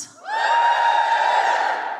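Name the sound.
audience cheering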